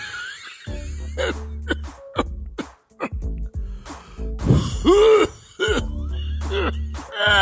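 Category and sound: human body sound, coughing and throat clearing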